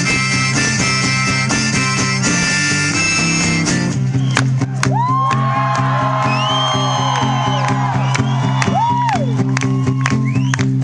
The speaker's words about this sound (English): Stop clapping, back to the serious shit.